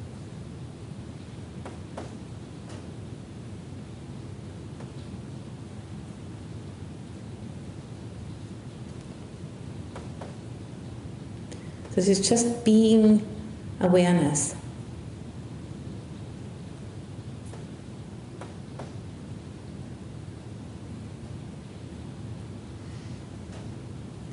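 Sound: rain falling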